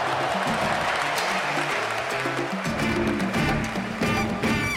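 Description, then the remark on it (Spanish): A large crowd in a stadium at a basketball game against the Dream Team applauds as Puerto Rico scores a basket, with steady, dense applause and cheering, loud and continuous throughout, with voices mixed into the roar. “Mirando el juego, te das cuenta de que la gente en el estadio poco a poco empieza a aplaudir cuando Puerto Rico encesta.”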